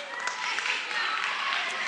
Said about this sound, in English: Okay, so everybody give them a big round of applause.